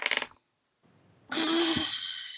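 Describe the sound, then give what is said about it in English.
A short burst of dice clattering onto a hard tabletop, a brief pause, then a longer, louder rattle as they roll and spin before settling on an 11, a roll for a strength saving throw in a tabletop game, with no talking. “Make a strength saving throw for me, please. Oh my god! I need a new dice!”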